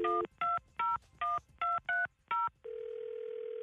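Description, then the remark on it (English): A phone number is keyed in to call a truck driver, as seven short, bright touch-tone beeps in a quick, slightly uneven rhythm, then a steady unbroken tone takes over the line. There is no talking. “We're going to listen in, and you call him right here, okay?”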